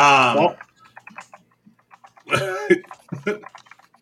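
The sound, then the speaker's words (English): Rapid, light keyboard typing of a man sending a chat message clatters along in a steady stream of small clicks, with bursts of voices and laughter breaking in at the start and in the middle. “He's typing.”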